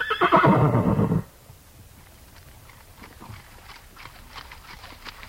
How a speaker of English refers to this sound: The Nez Perce and the government officers from the Clearwater National Forest mixed along in single file, their horses moving at a walk, mostly.